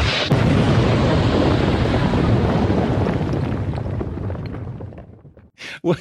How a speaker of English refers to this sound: I wanted an explosion there to really kick this thing off.